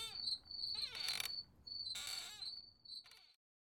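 Crickets chirp in a steady, high-pitched trill with a few brighter pulsing bursts, soft, before cutting off abruptly near the end.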